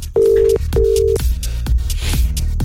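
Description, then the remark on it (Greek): A telephone line rings twice as a call is placed again, with steady, buzzy tones, each about half a second, followed by a busy patter of clicks and thumps continuing underneath. “Έλα, ξαναπάρε, κάνε μια φορά.”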